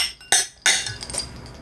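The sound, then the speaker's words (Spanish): Glasses clink together twice in a toast in quick succession, bright, each strike leaving a short shimmering ring that fades under faint background noise. “Un sonido, Juan. Salud.”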